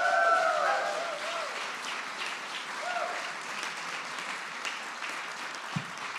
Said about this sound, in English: But can we thank the teams? Can we give them a big round of applause?